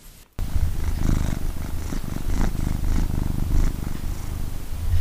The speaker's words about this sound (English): Purring by Storm.